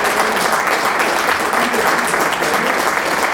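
An audience applauds steadily, a dense, continuous wash of many hands clapping at an even, loud level from start to finish, with no voices standing out.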